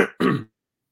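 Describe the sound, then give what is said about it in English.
Two quick coughs in rapid succession, the second slightly longer and harsher, followed by silence. No one talks. “sorry, just coughing.”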